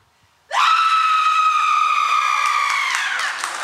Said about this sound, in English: We have somebody raising their hand that you're willing to do a horror scream.